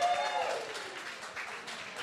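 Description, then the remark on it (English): Steady audience applause for the sponsor Emma, an email marketing company: a dense crackle of many hands clapping that holds at an even level for a couple of seconds, with a brief high whistle-like tone gliding down near the start. “Let's have a round of applause for Emma.”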